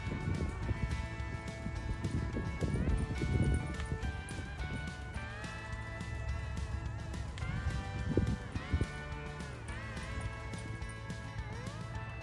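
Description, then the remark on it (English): Horse hooves clip-clop steadily across a training arena at the Bakey Ranch, a cutting horse training facility in Elk Grove, California, early in the morning. Fairly loud, with a droning, pitch-shifting mechanical whine running underneath throughout. “This is one of the top cutting horse training facilities in our part of the country. And this is one of the arenas where they train.”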